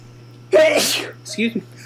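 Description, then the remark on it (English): A single loud sneeze bursts out with a sharp breathy blast, followed moments later by a brief murmured voice over a steady low hum. “Bless you. Excuse me.”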